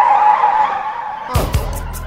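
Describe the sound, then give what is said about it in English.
A loud, sustained tire screech slides slightly downward in pitch for over a second, then breaks into a heavy crash with a couple of sharp impacts and clattering debris, opening a song. “No, the crash starts the song.”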